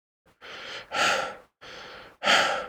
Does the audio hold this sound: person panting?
yes